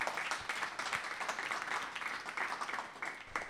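An audience applauds steadily, many hands clapping in a dense, continuous crackle at a fairly even volume for several seconds, with no voices standing out.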